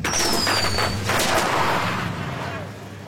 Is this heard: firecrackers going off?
yes